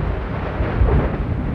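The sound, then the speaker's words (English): A deep, continuous rumble of an erupting volcano in Iceland as lava cascades and pours out of the crater, heavy low-end roar swelling slightly midway, loud with no voices present. “At every new cascade of lava, the Earth rumbles like thunder from an alien world.”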